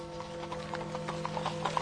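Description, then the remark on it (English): Hooves of a horse-drawn cab clip-clop in a brisk, steady rhythm of about a dozen hollow knocks, moderately loud, over a continuous low hum and soft hiss, on a rainy night in a Sherlock Holmes drama. No one speaks. “Here comes a cab.”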